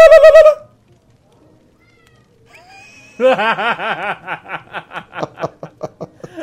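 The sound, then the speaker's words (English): A single loud meow from a pet cat at the door opens, then a few seconds of near silence before a run of rhythmic, breathy laughter that gradually trails off. “My Khajiit just meowed at the door.”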